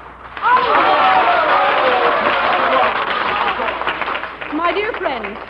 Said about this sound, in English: My dear friends, I thank you for your applause.